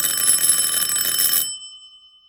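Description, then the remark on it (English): A loud, steady electric buzzer at Dixie Martell's apartment door drones for about a second and a half, a harsh, bright tone that cuts off abruptly and leaves a faint ringing tail. “Then why do you keep buzzing?”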